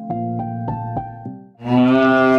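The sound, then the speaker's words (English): A cow moos, first a low droning call with a few rhythmic pulses, then a louder, brighter bellow that swells and holds to the end. “What noise does a cow make? Moo, moo, moo.”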